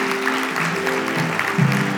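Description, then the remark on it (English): An audience claps steadily, applauding someone's decision to follow Jesus: a dense wash of many hands applauding at an even level throughout, with a low hum of voices mixed in beneath the clapping. “Can we acknowledge that somebody got saved today and applaud their decision to follow Jesus today?”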